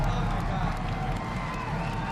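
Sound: crowd cheering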